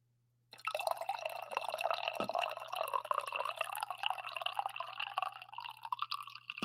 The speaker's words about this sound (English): Before we draft, it is time for the coffee pour. So everyone, please be quiet. If you're in a room with someone else, you can ask them to be quiet. I know everyone appreciates the ASMR element of these coffee pours.